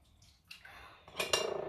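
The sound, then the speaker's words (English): Dishes clatter and clink as someone washes the dishes, scattered light knocks building to a louder burst of pots and cutlery rattling together, with a faint wash of running water underneath. “Okay, so I'm going to continue, but I feel like I'm going to make too much noise because I'm washing the dishes.”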